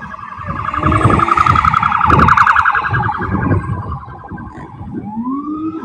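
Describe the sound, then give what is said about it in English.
A loud New York police car siren wails with a rapid warbling tone, rising into a fresh upward sweep near the end, over rumbling street traffic with no one talking. “The cop cars sound gay.”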